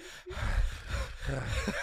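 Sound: imitated heavy breathing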